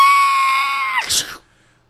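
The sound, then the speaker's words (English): A voice imitates a banshee shriek: one loud, high sustained wail lasting about a second, breaking into a harsh, breathy rasp before cutting off into silence. “And suddenly, you just see that overhead. Banshee shriek.”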